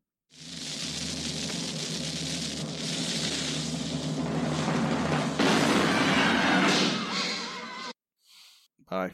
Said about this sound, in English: So, you know what we say, Matt? Fire the cannon. Fire the cannon.